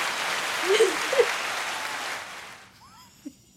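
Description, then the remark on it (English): A short round of applause: dense, steady clapping that holds for a couple of seconds, then cuts off quickly, with a few brief vocal whoops over it and faint tones at the end. “Hit a round of applause for that.”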